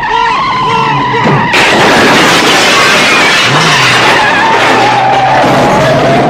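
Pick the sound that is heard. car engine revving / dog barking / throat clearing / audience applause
car engine revving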